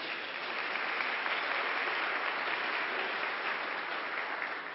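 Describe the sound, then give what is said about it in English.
Subdued applause from an audience responding to news that their new building passed its fire safety inspection, a steady patter of many hands clapping at modest volume for several seconds, with no voices over it. “Now, the reason for the slightly muted applause is it's a step in the right direction, but we have several more hurdles to go.”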